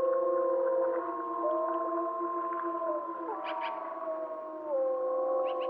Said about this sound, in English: Yes, these are wolves howling in the Yellowstone National Park.